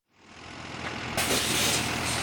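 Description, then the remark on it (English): A big yellow diesel school bus rumbles as it pulls up on an early morning for a waiting group of kids with backpacks, its engine growing louder, then a sharp, loud hiss of air brakes bursts out and holds over the idling engine. “Picture kids heading off to school, an early morning group toting backpacks and sports gear and lunchboxes waits as the big yellow school bus pulls up.”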